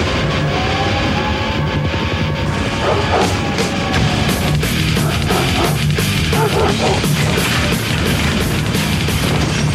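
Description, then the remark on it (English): Rapid bursts of fireworks crackle and bang in quick succession over a loud, steady roar of noise, with the pops growing denser through the second half. “Well, we get the opening titles, and then they're followed by some fireworks.”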